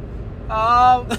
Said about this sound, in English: Guys, we are currently on our way to San Antonio. We're in a car, right? We're in my car. Raymond's driving.